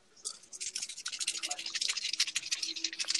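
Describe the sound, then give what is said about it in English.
Dice rattle and clatter in a fast, steady stream of sharp clicks lasting about three seconds, fairly loud, with no one talking over them, as they are rolled in a game of CeeLo. “When I first got these dice, like, I used to, like, I don't think I'm superstitious, but I'll roll and see if, like, oh, if I got, like, a 7 or, like, 11, or if I'm playing CeeLo, if I got something good”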